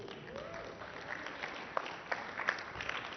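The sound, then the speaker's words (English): An audience applauds a reading in a steady, dense patter of many hands clapping, with a few sharper individual claps standing out near the end; moderately loud and without any talking. “Thank you for applauding my reading ability.”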